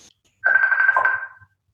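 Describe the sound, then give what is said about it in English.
A phone rings once in a single sustained electronic tone lasting about a second, fairly loud, with no one speaking over it. “You got something ringing there.”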